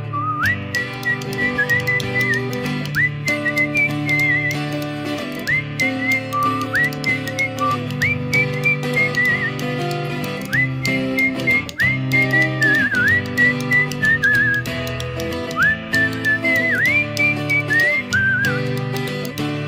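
A person whistles a bright, sliding melody in repeated phrases over a steady full instrumental backing, the whistle sitting clearly on top of the music throughout.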